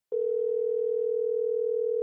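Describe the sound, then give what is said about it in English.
A steady, unbroken telephone dial tone of an outgoing call hums at a constant pitch and level for about two seconds, clear, with no voices or other sounds around it. “Let's give him another call. Maybe he didn't hear the first one.”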